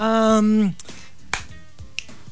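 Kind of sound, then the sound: human body sound, finger snapping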